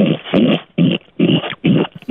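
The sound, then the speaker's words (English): A person imitates a lion's roar: four loud, rough, throaty bursts in quick succession, each about half a second long, with brief gaps between them and no speech. “there's a dude by the name of … who can teach you how to roar like a lion”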